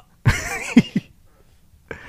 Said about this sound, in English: I burped, sorry.